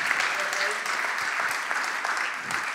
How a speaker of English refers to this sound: So can we just give Dave a round of applause? That is just such a great testimony. Thanks, Dave.